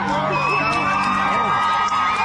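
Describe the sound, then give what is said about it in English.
A concert crowd cheers steadily, a dense wash of shouts, whoops and high voices holding at a loud, constant level, with sustained musical tones humming underneath the roar. “Everybody's cheering.”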